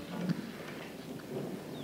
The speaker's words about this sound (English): We can't even send word through this storm.